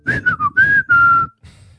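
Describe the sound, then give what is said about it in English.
A person whistles a short jeering phrase, a few quick dipping notes followed by two long held tones, imitating the impatient whistle a fight crowd made when the action was dull. No talking. “And then you would hear this whistle when the action was dull come up from the crowd.”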